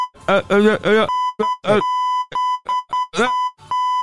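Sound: censor bleep over speech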